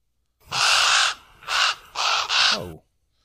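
A crow caws four times, loud, harsh and raspy: a long first call, then three shorter ones in quick succession, the last trailing off with a slight downward slur.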